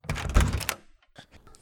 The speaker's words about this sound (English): I'm tired of guessing who's at the door. Just open it. All right, let's see who it is and open the door.